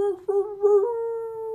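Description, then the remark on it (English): A person voices a wolf-like howl, a sustained tonal wail with a wavering start that settles into one long steady note, fairly loud, with no other talk. “starts howling.”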